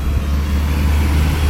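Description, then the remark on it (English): A steady, deep engine rumble of trucks driving past outside, low and continuous with a constant level throughout and no voices. “Trucks are driving past.”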